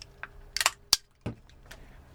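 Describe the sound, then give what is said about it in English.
A beer can cracks open: a light metallic click, a brief fizzy burst of hiss, then a sharp snap, followed by a dull low thud and one faint tick, with no talking. “Now I'm going to kook out on opening my beer.”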